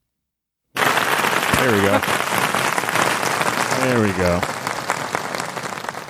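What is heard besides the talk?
soundboard applause effect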